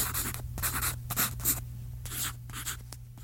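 A pen scratches across paper in a series of quick, uneven strokes with brief pauses between them, over a steady low hum.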